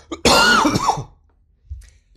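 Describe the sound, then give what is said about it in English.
A single loud cough bursts out with a raspy, throaty rattle lasting under a second, followed by a faint breathy sound after a brief pause. “Nice cough.”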